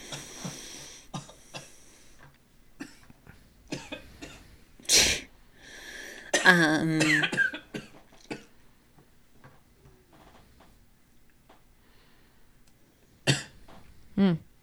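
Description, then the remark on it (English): A person coughs, a sharp burst followed by a rough, voiced hack, then two more quick coughs near the end, with soft clicking sounds scattered through the quiet gaps. “I just coughed like with dying.”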